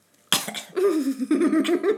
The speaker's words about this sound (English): But it does, if I beatbox too much, it does give me a cough.